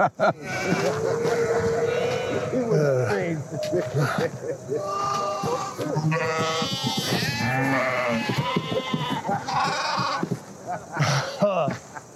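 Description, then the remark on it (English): Sheep bleat repeatedly in wavering, drawn-out cries, overlapping with people talking throughout the scene. “Stay with the sheep.”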